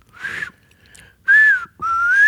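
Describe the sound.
A person whistles three quick, warbling beep-like phrases, imitating the chirps of the robot R2-D2; the first is softer, the last two loud, with pitch sliding up and down. No talking.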